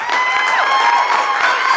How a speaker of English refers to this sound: Heck yeah, insert some applause right here.